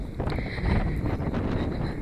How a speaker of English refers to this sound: It's really windy, so I'm hoping this recording is good.